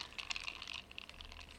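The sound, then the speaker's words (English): A quiet, brief pour of lime juice into a cup of tequila and soda for a ranch water drink, a thin trickling splash with small irregular bursts, with no voices. “You gonna grab that little lime juice, Keys? Oh shit, too much.”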